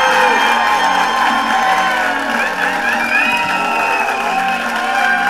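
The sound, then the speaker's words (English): A big audience applauds and cheers steadily for the introduction of comedian Kelly Griffin, with whoops and shouts rising over continuous loud clapping for several seconds. “I'm like, boy, they're clapping hard for my intro, man!”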